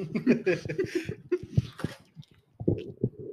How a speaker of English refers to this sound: These motherfuckers are gonna be like, who the fuck is munching right now?